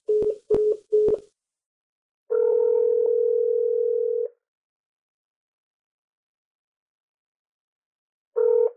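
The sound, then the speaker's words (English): A few quick clicks and short tone blips, then a steady telephone tone hums for about two seconds, falls silent, and starts again near the end as someone calls the same number again. Clear, with no voices. “Still can't pick up your motherfucking phone, I guess. I'm trying you again.”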